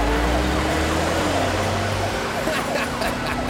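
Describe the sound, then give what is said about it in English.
The siren of a super police car clearing the road wails loudly and steadily over a low vehicle rumble, its rising and falling tone running through the whole moment without a break. “Initiating super police car transformation.”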